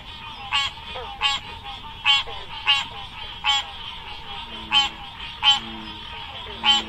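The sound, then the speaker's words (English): An American green tree frog gives a series of about nine short, bright, bell-like honks, spaced at a fairly steady rhythm just under a second apart, over a low rumbling background. “Supposedly, this distinctive call has earned them the nicknames bell frog or cowbell frog, but I have to admit that I went through a lot of sound files for American green tree frog calls, and this was the most bell-like I could find.”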